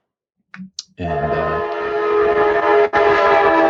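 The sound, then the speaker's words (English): A loud, sustained horn of a passing speed train that runs from TJ to San Francisco blares after a few brief clicks, holding a rich, harmonic chord for nearly three seconds with a short break near the end, overpowering. “Wow, I think that train is coming through your door.”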